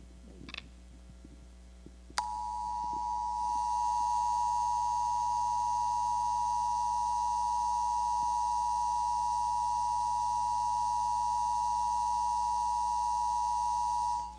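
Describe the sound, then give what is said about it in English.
An emergency storm warning alarm tone bursts in abruptly after a few faint clicks, then holds one loud, piercing, unwavering electronic pitch for about twelve seconds without a break. “So while preparing this devotion, I heard a familiar alarm going off, like what you would hear on TV when there is a storm coming.”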